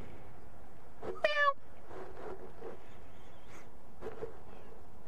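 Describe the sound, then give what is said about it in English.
A cat in a yard meows once, a short, slightly falling cry about a second in, standing out clearly against an otherwise quiet background with faint low murmuring. “Ooh, there's a cat.”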